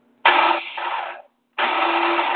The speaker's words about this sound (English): I got stuff in a blender.